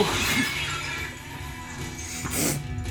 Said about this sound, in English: Windshield shattered much more easily back then.